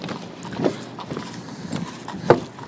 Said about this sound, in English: You know, I just let it play. I thought, should I talk over it? And I thought, no, I just wanted you guys to feel the ambiance. You know, you could hear the cash register. You could hear other people ordering.